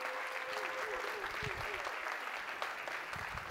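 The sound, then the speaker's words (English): A church crowd claps for its newly announced executive pastor in a steady, dense, continuous wash of applause, with a faint tone and a few low thumps underneath. “Would you please give him a round of applause?”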